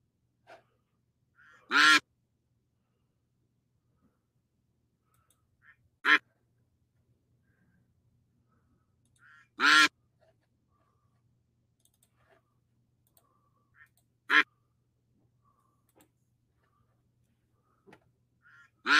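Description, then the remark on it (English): Loud, nasal duck quacks from an online duck race ring out one at a time with long quiet gaps between them, five or so calls spread irregularly over a near-silent background. “I think it's just lagging now because we're doing the duck race sort of thing.”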